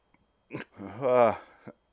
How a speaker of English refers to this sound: that was a cough covering a sneeze, covering, I don't know what the fuck else that was.